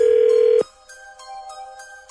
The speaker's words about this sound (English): Dialing at random.